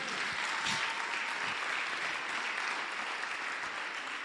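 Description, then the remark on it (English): A large crowd claps steadily and continuously, a dense wash of many hands applauding together at full volume with no pauses, filling the whole moment without any voices rising above it. The applause is for Jesus. “Clap for Jesus.”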